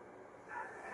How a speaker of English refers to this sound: That's not the right dog. With the dog in the picture.